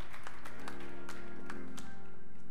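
crowd, audience clapping hands

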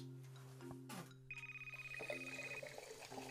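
household object, telephone ringing

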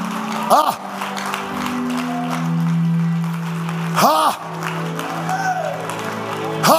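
crowd, audience clapping

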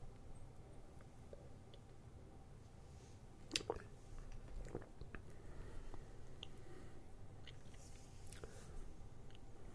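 food or drink, sipping beer

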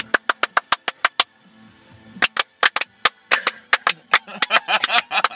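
sound effect, hand claps

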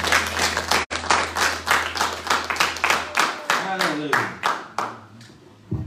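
crowd, audience clapping hands

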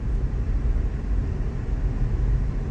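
vehicle, police car passing by

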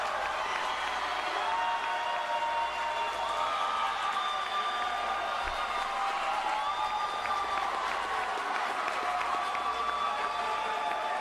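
crowd, crowd cheering wildly

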